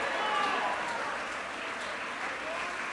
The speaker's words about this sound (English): Jump to your feet, clap your hands and shout, I want it, I want it, I want it.